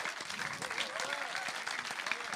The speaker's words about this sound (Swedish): Fantastiskt, ge dem en applåd.